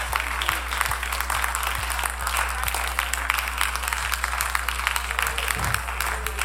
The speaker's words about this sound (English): But I want to give Him thanks. Let's give Him thanks right now. Let's clap our hands.